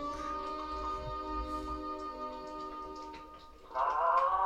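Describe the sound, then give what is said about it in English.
A toy cow's moo from Maggie's Christmas gift drags out as one long, droning, sagging tone, like a worn-down noisemaker groaning its last, then swells louder and strained near the end. No one speaks. “A wonderful gag of Maggie's gift there, which has the cow sound effect. Sort of dying. Its last breath there.”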